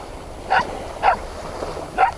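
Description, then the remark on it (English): A dog barks three times in quick, sharp bursts at a cow that is following it, with short pauses between each bark over a faint outdoor background; no one speaks. “He's just barking and doing no harm, but he's definitely going to have a sore throat this night.”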